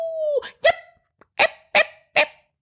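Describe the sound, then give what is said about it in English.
A miniature poodle named Sammy lets out a brief whine, then five sharp, high-pitched yapping barks in an uneven rhythm, loud, with short silent gaps between them and no talking. “It was the voice of Sammy, my miniature poodle, and his high-pitched bark.”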